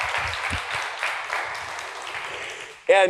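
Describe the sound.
Steady audience applause, a dense crackling wash of many hands clapping at an even level for about three seconds, then cut off as a voice begins speaking.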